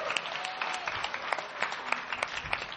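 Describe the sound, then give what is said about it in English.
A crowd at SCUM claps steadily, dense overlapping hand claps with sharp individual cracks poking through a continuous bright wash, at a moderate, even level throughout. “Everybody give Dave a round of applause.”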